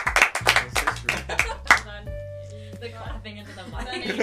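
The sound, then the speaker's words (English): A quick run of about eight loud, sharp hand claps into a microphone in an uneven rhythm over the first couple of seconds, followed by people talking. “The clapping into the mic.”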